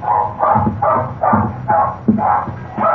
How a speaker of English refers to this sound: You can understand our big surprise when suddenly Enid began barking wildly.